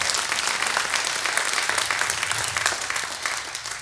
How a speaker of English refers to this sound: Someone says, thank you, God, for his love. Come on, give God a hand clap for his love.